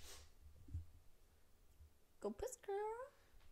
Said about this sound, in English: Oh my god, I'm gonna sneeze.